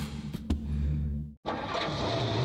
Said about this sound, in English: He falls against the steering wheel, and the horn begins to blow, a long, monotonous moan.